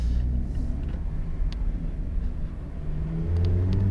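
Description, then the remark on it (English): An MX-5 sports car engine drones steadily from inside the cabin while driving down a small side road, low and rumbling, then rises into the original car's throatier, raspy exhaust note as it accelerates near the end. No one speaks. “The raspiness of the original car's exhaust still there as well.”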